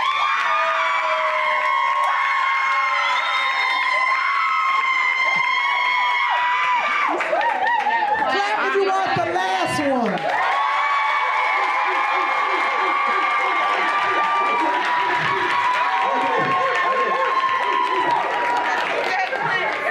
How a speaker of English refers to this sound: Clap if you want the first one.